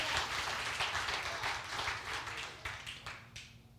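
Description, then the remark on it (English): A crowd applauds steadily, many hands clapping in a dense, continuous wash that holds level before thinning out toward the end, with a few last sharp claps standing out. “Give God a clap, not me.”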